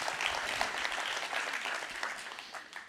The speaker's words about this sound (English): There you go. They're clapping for you.